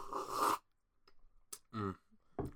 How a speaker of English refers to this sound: I've got a nice cup of hot chocolate. I'm taking a sip.